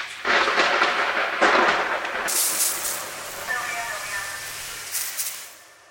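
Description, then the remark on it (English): A thunder sound effect in a grocery store produce section, played to signal that the vegetable misters are about to turn on: a loud, rolling crash for about two seconds, then a long hissing wash that gradually fades out. “One time, in the grocery store produce section, the light started blinking, and a thunder sound effect played to signal that the vegetable misters were about to turn on.”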